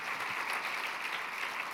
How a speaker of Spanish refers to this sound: Así que le podemos dar un aplauso a Dios por cada persona que dieron de su tiempo y ayudaron.